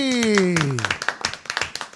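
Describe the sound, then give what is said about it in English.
A falling, drawn-out voice cheer opens, then an audience breaks into steady, rapid clapping as Gary V is introduced, many crisp overlapping claps of moderate loudness continuing to the end. “Oh, the claps. I love it.”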